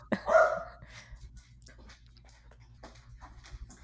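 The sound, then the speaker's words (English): A single loud dog bark rings out near the start, followed by a few fainter, scattered vocal sounds and quiet background noise. “I normally have both my kids home so someone else can monitor the dog.”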